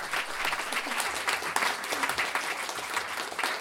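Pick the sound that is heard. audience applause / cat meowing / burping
audience applause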